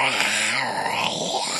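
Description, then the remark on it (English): A person imitates a zombie growl, a rough, sustained guttural snarl lasting a second or so, loud with a raspy, throaty texture. “Oh, and here's my zombie growl.”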